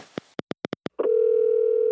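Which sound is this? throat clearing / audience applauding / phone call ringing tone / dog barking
phone call ringing tone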